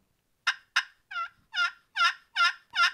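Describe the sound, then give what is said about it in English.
Two sharp turkey clucks followed by a rhythmic run of five high-pitched yelps made on a turkey call, loud, with no talking. “Now, at this point, if he starts gobbling with that, but he doesn't seem to want to come, throw in some clucks and yelps on a little bit higher pitch.”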